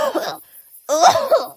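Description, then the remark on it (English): Two rough, harsh coughs from an ill mother, a short burst followed by a brief pause and then a longer, throaty cough that rattles slightly before trailing off. “It's all right, dear. This cough is...”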